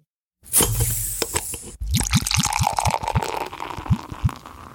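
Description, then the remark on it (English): Beer pours into a glass, first a splashing hiss, then a quick run of rhythmic glugs from the bottle over steady fizzing foam. No voices. “I think it's time to pour another round.”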